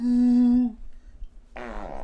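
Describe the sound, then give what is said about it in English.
A loud fart lets out one steady, buzzy blast lasting well under a second, then stops abruptly. After a short quiet pause, someone reacts with a loud exclamation. “I feel like your next fart is just gonna go.”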